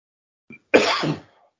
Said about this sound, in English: I've got the cough. You have. I've got the coughs and I've run out of drink.